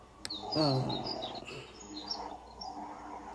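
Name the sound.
bird singing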